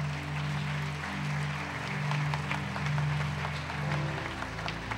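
An audience applauds together in praise of God in a steady wash of many overlapping claps, moderately loud, with a low sustained hum of organ or keyboard tones underneath and no speech.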